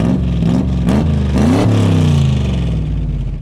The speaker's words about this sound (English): Yep. That was a construction truck, I think, unfortunately.